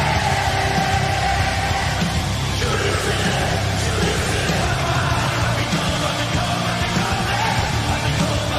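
A huge arena crowd sings along together, a dense, steady wall of many voices that stays loud and unbroken for the whole stretch, with occasional shouts rising out of the mass.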